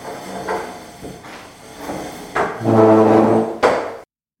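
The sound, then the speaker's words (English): A chair is fetched to stand on: a few soft knocks, then a loud groaning scrape as it's dragged across the floor, ending in a sharp clunk before silence. “Hang on, I really, really don't have time for this, but let me just get a chair to stand on to see if that gives me enough space to actually unravel this list of things that I can't tell you about because I am too busy.”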